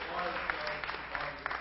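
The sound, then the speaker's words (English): An audience applauding, a dense, steady wash of many hands clapping at moderate volume, with a few sharper individual claps popping out above the rest. “They liked it, apparently. They always clap.”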